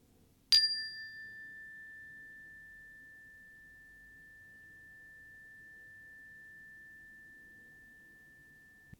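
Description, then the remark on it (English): A single meditation bell is struck once to close a meditation practice and rings out clearly, its pure tone lingering and slowly fading over several seconds amid silence. “And whenever you feel complete with this meditation practice, coming back to this new moment of life at the sound of the bell.”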